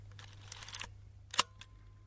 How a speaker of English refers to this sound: the two of you can guess which shutter sound belongs to which camera